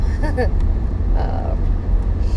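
Steady low road rumble fills the inside of a car driving home in cold weather, with snow on the windshield and an iced back window, a constant droning hum with no breaks, while a voice briefly murmurs over it near the start and middle.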